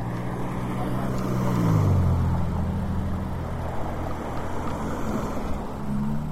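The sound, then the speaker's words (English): Cars drive past, a steady engine rumble with a drop in pitch as one goes by, then more traffic humming along with nobody talking. “Let these cars go by.”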